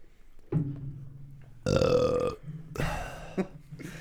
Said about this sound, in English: I think we should do a burp compilation.